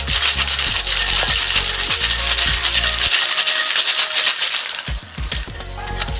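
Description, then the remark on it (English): Ice rattles hard inside a metal cocktail tin holding blanc vermouth and lemon juice, shaken vigorously in a fast, steady rhythm for several seconds, loud with a bright, clattering texture and no voices. “You're gonna add ice to your tin. We've got a coupe or a martini glass with ice chilling on the side while we shake this, and that's gonna get some special attention in just a second, but give this a good hard shake.”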